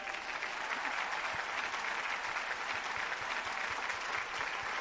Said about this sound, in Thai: แล้ววันนี้ครับอยากให้ทุกๆคนครับที่เป็นครอบครัวของเรายืนขึ้นและรับเสียงปรบมือจากคนในฮอลล์หน่อยครับ